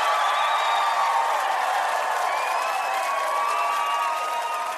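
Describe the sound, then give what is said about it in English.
A loud, dense roar of crowd noise with cheering and scattered shouts holds steady throughout, easing only slightly in the final moments. No one speaks. “Play track 3, and you hear this abrupt crowd fade out.”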